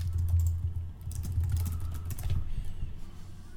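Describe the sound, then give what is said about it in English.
Rapid, irregular clicking of someone typing on a computer keyboard to look up capybara pet videos, keys clacking steadily for several seconds over a low, constant hum, with no voices. “Some clickety clacking.”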